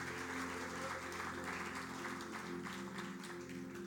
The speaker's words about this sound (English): Come on, let's give you a clap of hands.